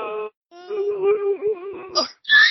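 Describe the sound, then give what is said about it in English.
A drawn-out, wavering wail of anguish, then short bursts of shrill, high-pitched screaming: agonized cries from a horror movie. “Oh, that screams.”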